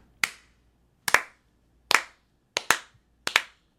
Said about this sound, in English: Round of applause for Sony, everyone. They did such a phenomenal job.